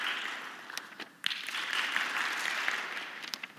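A studio audience applauds steadily, a dense wash of many hands clapping at once, holding a fairly even level throughout with a brief dip just before it swells again.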